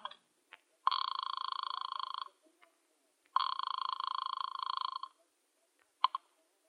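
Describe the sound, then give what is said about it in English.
A call placed from a phone booth at the rear of a residential hotel lobby: the line rings twice in long, buzzing bursts of about a second and a half each, with a pause between, preceded and followed by a few sharp clicks like a receiver or dial being handled. “I decided I'd try calling her again.”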